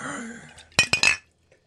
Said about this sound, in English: I got it. Almost a disaster. You nearly smashed your bottle.